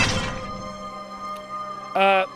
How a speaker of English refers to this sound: And at that moment, you hear, like, a crashing smash in the dance floor room.